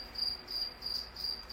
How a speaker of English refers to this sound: I'd like to thank my crickets for being here.